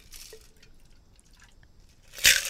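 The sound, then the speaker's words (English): Soda being poured into a glass: faint fizzy crackling and a small drip, then a sudden louder splash of liquid near the end. No one talks. “Like, I might have poured a little too much in there for me.”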